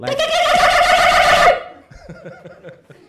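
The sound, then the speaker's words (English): A voice imitates the call of a plover, an Australian bird with a spur on its wing that attacks people, as a loud, harsh, sustained screech for about a second and a half, followed by brief laughter and speech. “It's called a plover. And it has like a spur on its wing.”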